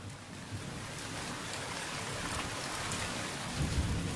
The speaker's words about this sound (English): So far, monsoon 2021 hasn't disappointed. We've seen dark skies, cooler temps, and yes, rain. Lots of rain.